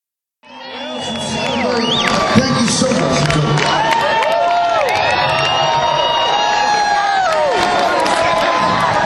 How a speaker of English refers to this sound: At the end of the song, he said goodnight to Nashville. Let's listen to him leaving the stage and some fans in the crowd.